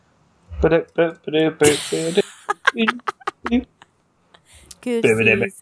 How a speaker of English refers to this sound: Look it up. Typing.